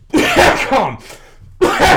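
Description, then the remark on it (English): Loud, harsh coughing in bursts from a person with something stuck in their throat: a rough double cough, a short pause, then another forceful cough, with no talking alongside. “Wow, you keep coughing all the time.”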